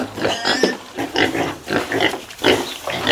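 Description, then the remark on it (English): Pigs oink and grunt in a rapid series of fairly loud snorting bursts, about five in three seconds, with a few higher squeal-like tones mixed in and no talking. “The two of them started out as a comedy sketch team doing gigs everywhere, including one hilarious incident as lawyers in a court with live pigs.”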